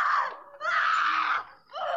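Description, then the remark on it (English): A loud, shrill shriek rings out in three piercing bursts, the middle one longest, harsh, with no talking around it. “Then we hear a shriek.”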